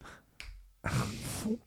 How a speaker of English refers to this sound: Hey, you want to see a neat trick? Snap your fingers.